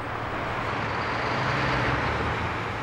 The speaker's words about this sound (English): Over 100,000 cars and trucks thunder across here every day.